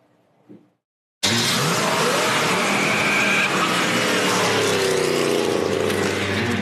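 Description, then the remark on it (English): After a brief near-silent moment, a muscle car engine bursts in loud, roaring steadily as it revs and accelerates, its pitch climbing through the run. “You know, he made a bunch of videos where he's driving around in muscle cars and selling.”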